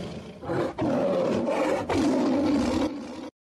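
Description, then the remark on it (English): A person lets out a loud, sustained imitation of a big cat's roar as a roar for liberty, raspy, rising in a few surging bursts for about three seconds before cutting off abruptly. “And I want to, for everyone there, for everybody joining us, a roar for liberty.”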